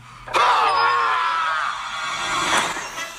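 A vampire character's loud, drawn-out scream bursts in abruptly and holds for nearly three seconds, strained and anguished, surging once more just before it cuts off.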